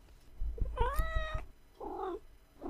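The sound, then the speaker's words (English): A cat named Cricket, a former shelter cat, meows twice, a long rising-and-falling yowl followed by a shorter, lower meow, with some soft thumping underneath the first call. “So, Cricket, you were a shelter cat.”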